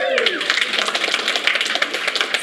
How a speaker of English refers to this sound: Give her a hand clap.